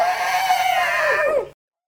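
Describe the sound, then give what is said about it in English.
A Shriek Beast, a fictional creature, gives a single loud, piercing shriek lasting about a second and a half, wavering slightly before its pitch sags and breaks at the end, then silence. “The Shriek Beasts are now chewing on the sand with an interested expression.”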